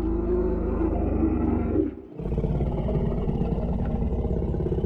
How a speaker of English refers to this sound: A roar bellowed from the dark ahead of them.